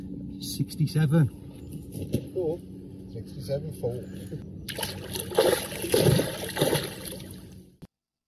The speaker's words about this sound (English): This is the actual sound of Carrot, the goldfish, being released back into the water. Listen carefully so you can understand for yourself how big this fish is. Listen carefully to the splash sound it makes.